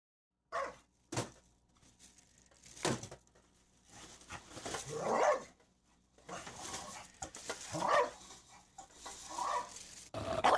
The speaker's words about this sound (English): So I wrote the bulldog's bark can go from a standard defined dog bark, pretty average sounding, to kind of a jowly, snarly bark, which comes right after.